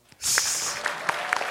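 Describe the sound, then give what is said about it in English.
A live crowd breaks into applause after a brief quiet moment, a dense, steady wash of many hands clapping at once, with a few sharper individual claps standing out. “I know we talk about the wedding clap.”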